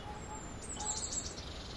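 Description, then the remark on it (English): Faint wild birds sing a brief burst of high chirps and tweets over a low, steady outdoor rumble, with no one speaking. “Some are singing all night. There's quite a lot of different birds out and about this early in the year.”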